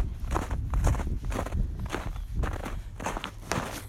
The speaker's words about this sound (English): Crunch, crunch, crunch. That's just me stomping. I like if we get to go stomping. If I can go stomping in the snow, then I can hear crunch, crunch, crunch. Do you hear that sound? It was crunch, crunch, crunch.